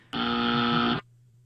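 A single harsh game show buzzer marking a wrong answer in a movie quiz blares for nearly a second, a flat, rasping tone rich in overtones that cuts off abruptly into a faint low hum.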